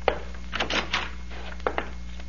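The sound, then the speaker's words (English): The door handle of a recorder's office is rattled and the latch clicks, a brief scraping creak as the door swings, then two sharp knocks over a steady low hum. No one speaks. “Let us try the door.”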